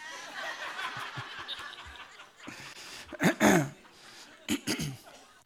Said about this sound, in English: Here's the last one. Let's clear my throat again. That brought something up there. I don't know what it is.